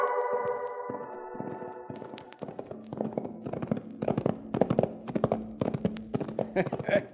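horse hooves clip-clopping

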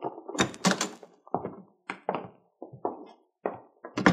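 door being opened

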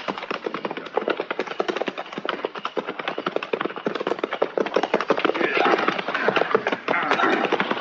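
horses approaching

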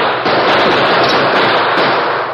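volley of gunshots

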